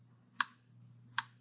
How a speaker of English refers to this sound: The clock kept ticking.